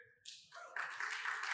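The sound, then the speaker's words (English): A church audience breaks into applause for the announcements, starting thin and quickly swelling into a dense, steady patter of many hands clapping together, fairly soft overall. “Clapping for announcements.”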